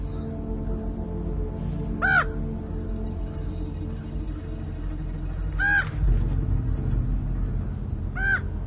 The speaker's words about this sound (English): Crows are landing. Eating, picking up the fucking shells? Trying to.